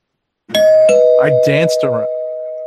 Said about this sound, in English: I'll ring the bell, hold on.